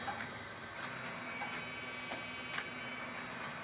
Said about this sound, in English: To build your media profile, you need to output a profile chart using the calibration setting or settings that you've just made. Here we are printing an IT874 chart which has over 1,600 patches.